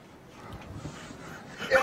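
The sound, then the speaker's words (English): Heavy panting, a run of quick, breathy huffs in a steady rhythm, growing a little louder near the end, where a brief high whine-like sound cuts in. “He's panting.”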